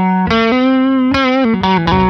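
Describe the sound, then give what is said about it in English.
An electric Telecaster guitar on its neck pickup, a Seymour Duncan Vintage Staggered Strat-style single coil, played through an overdrive pedal into a Princeton Reverb amp, plays a short melodic phrase of sustained, gritty single notes with sharp pick attacks, loud, with no talking. “this is actually the neck single coil, which is a Strat single coil on my Telecaster”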